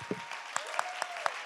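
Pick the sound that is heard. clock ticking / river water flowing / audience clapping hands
audience clapping hands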